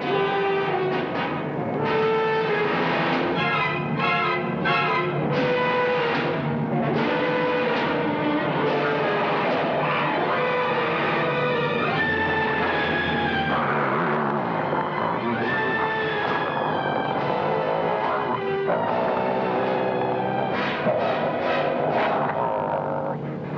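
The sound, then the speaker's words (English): A man growls and snarls like a dog, heard over a telephone call from London, in a long, loud, continuous run of rough, wavering vocal bursts with sliding pitch swoops, no words spoken. “A guy growls like a wolf.”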